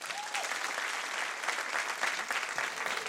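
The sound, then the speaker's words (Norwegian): An audience claps steadily for today's guest, a dense, even patter of many hands at moderate loudness throughout, with no voices standing out. “Men nå en stor applaus til dagens gjest, som snart blir våken der med en haug med bøker,”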